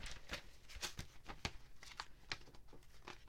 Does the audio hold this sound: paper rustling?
yes